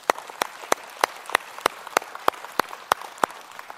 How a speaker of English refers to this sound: So let's just give God a hand clap of praise right now.